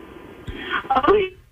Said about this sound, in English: Oh, no, your phone's breaking up.